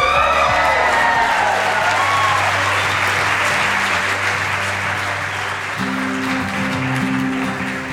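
A crowd applauds steadily and loudly for several seconds as a singer is welcomed on a live music show, a dense wash of clapping with a few scattered whoops and cheers, while low sustained musical tones hum underneath.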